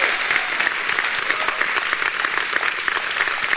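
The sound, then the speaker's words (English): A church audience claps steadily and loudly for a few seconds, giving the Lord a round of applause, a dense, continuous wash of hands with no voices standing out. “If you believe that, can you give the Lord a big round of applause today?”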